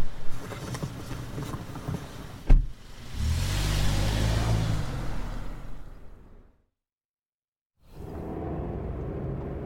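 A taxi cab engine hums and rumbles in heavy evening traffic, rising in a low revving surge with a brief thump, then cutting to silence before the road noise resumes.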